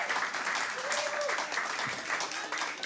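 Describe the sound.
Steady audience applause for a guest on the show fills the whole stretch, a dense crackle of many hands clapping at once, with a brief tonal hum partway through and faint voices underneath.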